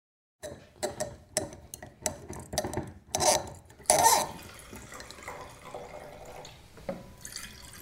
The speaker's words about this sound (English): It's very unusual for me to pour wine while sitting. Usually I stand.